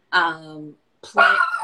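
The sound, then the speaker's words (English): A dog vocalizes in two drawn-out, whiny bursts separated by a brief pause, the first sliding downward in pitch, clear. “Your dog is like giving us the tea on the side.”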